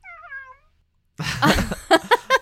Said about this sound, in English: My cat woke up. Do you think the microphone picked that up? Yeah, I think so. Well, if you heard him, that's true. My cat just woke up from a very heavy nap, and he tried to step on the keyboard.